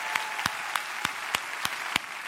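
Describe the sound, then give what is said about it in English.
A crowd gives a round of applause for Pastor Tim in a dense, steady wash of clapping, with sharp, evenly spaced louder claps standing out about three times a second. No one speaks. “So can we just give Pastor Tim a big round of applause one more time?”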